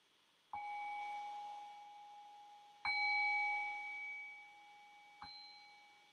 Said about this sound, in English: And so in the next breath or two, I'll ring the sound of the bell here and then bring us back into a conversational space.